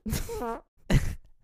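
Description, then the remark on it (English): A voice imitates a fart: first a buzzy, wavering, pitch-bending sound, then after a brief pause a short, breathy blast, with no actual words spoken. “and just unzips it, and all of a sudden he farts.”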